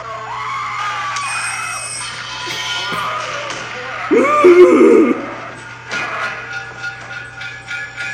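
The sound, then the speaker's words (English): A brief male scream sound effect, about a second long, bursts out midway and wavers in pitch before cutting off, set against a steady low hum and faint background noise. “I have the fucking mail scream. There you go.”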